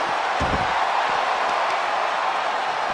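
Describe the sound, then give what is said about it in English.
A couple of heavy thuds land early, like a wrestler stomping on a fallen opponent, with fainter impacts after, all under a constant loud roar of an arena crowd. “Oh, and a stomp.”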